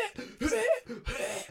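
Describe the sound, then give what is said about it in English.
A voice imitates coughing, two harsh, throaty hacks in quick succession, fairly loud, with no other talking around them. “So you can just have him, like, cough up blood. Because it's kind of dumb when you go...”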